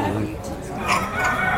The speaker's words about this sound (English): So these are Bourbon red turkeys, they look. I wish it wasn't lunchtime. They're so huge. And they've got these, so to describe them, they've got sort of chestnutty shoulders and these great kind of scaly, wattly heads